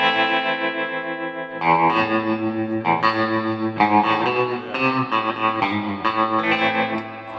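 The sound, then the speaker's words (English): An electric guitar plays a slow series of sustained, ringing chords through a Topanga Spring Reverb pedal, each change blooming and decaying into a lush, slightly driven wash. No one speaks. “No, this is the Topanga Spring Reverb.”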